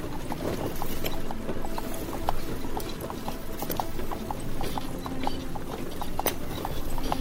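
Horse hooves clip-clop in a steady, brisk rhythm of sharp knocks as the horses are driven on, repeating throughout over a continuous low rumble and rattle of the cart's wheels.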